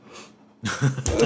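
A yawn: a soft breathy intake, then a louder voiced, drawn-out groan lasting under a second, with no words spoken.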